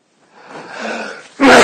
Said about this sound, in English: Excuse me. Might be a few more of those sneezes coming.